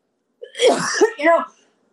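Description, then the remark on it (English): A person with terrible allergies gives a fairly loud cough in two quick harsh bursts, lasting about a second, with silence before and after. “Hold on, I have to cough.”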